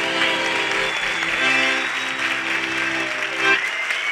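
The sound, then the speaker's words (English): A theater audience at the Tennessee Performing Arts Center in Nashville, at a live taping of Writers Radio Theater, applauds a musician in a steady, dense wash of clapping that lasts the whole stretch, with sustained musical tones playing underneath. “Ladies and gentlemen, another warm round of applause for ….”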